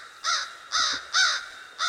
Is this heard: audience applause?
no